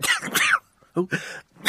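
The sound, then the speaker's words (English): Three sharp, breathy sneezes: two in quick succession, a short pause, then a third, each a loud explosive burst of air and voice with no talking. “I mean, honestly, that was like double sneeze and then one.”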